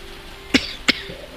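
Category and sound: human body sound, cough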